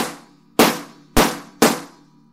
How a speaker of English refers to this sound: And it looks like a leather seat cushion. It's literally just stuffed with padding, and it's a leather upholstered top. And you have a slapper that looks like a yardstick, and you just slap the leather seat cushion.